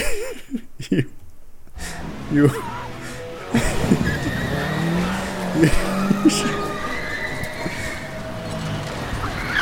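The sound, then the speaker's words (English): A car revs and drives off with tires squealing in a couple of sharp bursts, set against a busy, cluttered background of mechanical noise that stays fairly loud throughout. “You get into your car and drive up the stairs to the chief's office.”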